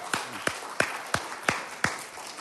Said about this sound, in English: How awesome is God? You can give him a round of applause if you want.